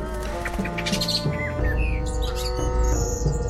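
A bird chirps and calls in a string of short, high tweets and rising whistles over a steady low droning background, moderately loud, with no talking.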